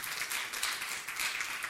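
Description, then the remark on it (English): An audience at Cross Church claps together in a dense, steady wash of many hands, bright and crackling, holding at an even moderate level with no voices standing out. “Now clap. You can clap now, yes.”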